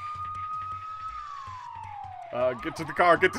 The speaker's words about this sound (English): Into the den of this house, and you as well can hear the police sirens, and you see just kind of the color off in the distance reflecting into the home.